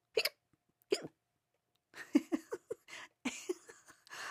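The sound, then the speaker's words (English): Two sharp, isolated hiccup-like gulps, followed by a rapid, uneven string of voiced hiccup sounds, apparently a person imitating hiccups with their voice. “I think I like it because the word actually sounds like what it is. Hiccup, like hiccup, hiccup.”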